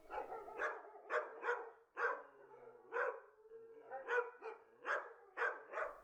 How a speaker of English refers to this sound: and of course, a pack of overexcited dogs.